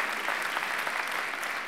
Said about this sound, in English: I noticed half of you clapped, which, you know, that's okay.